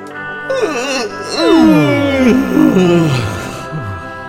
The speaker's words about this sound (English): Squeeze and open! It's getting so late. I feel like yawning again. You can join me if you want.